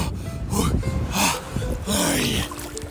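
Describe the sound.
Gusty wind buffets a microphone with low rumbling bursts, under sharp breathy gasps and a voice in the cold outdoor air, as a person walks into the sea at Pevensey on the South Coast.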